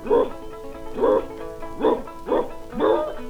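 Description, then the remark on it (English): A man's voice imitates an old dog barking as it comes out of the mountain on a trail, five drawn-out, hoarse woofs in a steady rhythm, fairly loud with no other sounds around them. “The old dog coming out of the mountain, he's giving him something like this, said”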